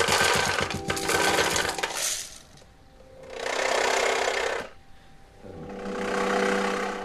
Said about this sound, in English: bones, coins, and these materials would vibrate percussively when infrasonic pulses, vibrations that are too low in frequency to be heard by the human ear, when these infrasonic pulses were sent through them, the materials would vibrate percussively.